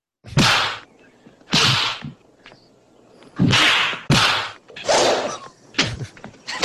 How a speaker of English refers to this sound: Yeah, that's the sound, the body dropping sound. I can listen to this all day. I can fall asleep to it. This is like a white noise to me.